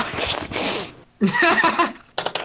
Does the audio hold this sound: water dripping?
no